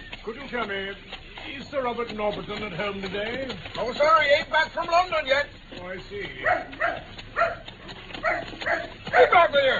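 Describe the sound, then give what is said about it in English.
A dog, just let loose from its lead, barks and yelps excitedly in repeated bursts, loud, with raised voices and commotion mixed in around it. “And I think I shall also accidentally loose my hold of this good dog's lead.”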